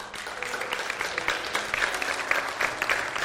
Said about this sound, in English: If that's you, if this morning was that encounter for you, we applaud you. In fact, we're going to applaud you now.